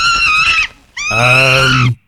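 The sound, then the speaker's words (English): Upset monkeys let out two loud, shrill, drawn-out cries separated by a brief pause, with no other sounds around them. “The royal messenger monkeys are here, and they sound a little upset.”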